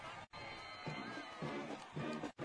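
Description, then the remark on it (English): A big football stadium crowd in Unionville cheers and roars near the end of the game, a dense wash of many voices swelling in waves and broken by two brief drop-outs. “And the game is almost over as this Unionville crowd lets them hear it.”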